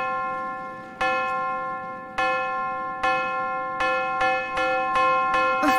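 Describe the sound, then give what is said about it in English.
A plain bell is struck about eight times, each clang ringing on with a bright, sustained tone. The strikes come faster and more insistently toward the end, with no voices. “You start ringing it like crazy.”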